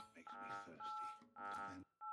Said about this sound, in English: What the hell was that beeping? That was a little painful. Yeah, I don't even know what that was. Sorry to everybody that was the computer rejecting Negan's talk.